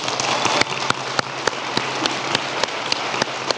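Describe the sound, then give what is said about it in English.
An audience cheering for the Broncos cheers and applauds in a dense, steady roar, with sharp rhythmic claps standing out about three times per second. The noise stays loud and even throughout, with no speech over it. “If you're cheering for the Broncos today, let's hear it.”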